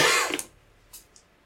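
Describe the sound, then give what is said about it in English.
A harsh, sputtering cough bursts out, then trails into two brief, breathy hacks, like someone coughing up amniotic fluid. No one speaks. “And he's just coughing up.”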